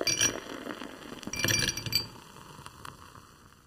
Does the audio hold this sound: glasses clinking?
yes